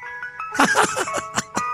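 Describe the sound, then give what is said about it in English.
A tinny ice cream truck jingle plays its electronic melody from an ice cream truck giving vaccine shots, with short bursts of noisy clatter cutting in over the tune. “I'm here with an ice cream truck with your shot.”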